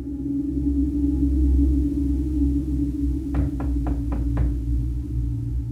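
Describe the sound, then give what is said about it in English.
Five quick, evenly spaced knocks on a front door at 5:30, crisp, rapping out over a steady low background hum, with no one speaking. “The knock came exactly at 5:30.”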